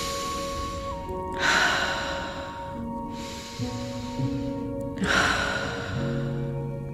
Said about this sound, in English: Settling here, gently breathing in through the nose and out through the mouth.